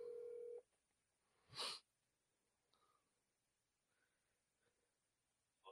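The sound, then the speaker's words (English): A cell phone's electronic dialing tone sounds clearly for about half a second as an outgoing call is placed, followed by a sharp burst of noise and a few faint, scattered beeps, with no one talking. “So give me a second so I can do my dialing for dollars.”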